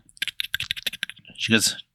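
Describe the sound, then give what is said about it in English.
Quick, uneven keyboard typing clatters for about a second, a rapid run of sharp clicks, as a receptionist on a phone call enters a caller's information, followed by a short, louder voiced sound at the end. “You hear like a typing.”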